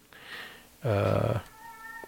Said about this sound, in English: Yeah, cat!